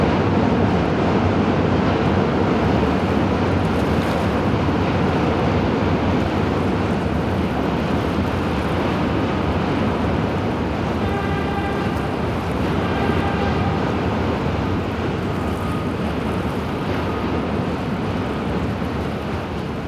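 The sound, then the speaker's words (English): A loud, dark, continuous rumble of an elevated subway train passing overhead in New York, steady throughout with a brief high metallic whine partway through. No voices. “The waves on the pebbles has the same kind of roar, the ebb and flow of dark, heavy, rumbling sound as this elevated subway passing overhead.”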